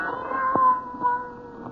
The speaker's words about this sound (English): Then the silence was broken by the faint crying of one cat. The crying grew louder and louder.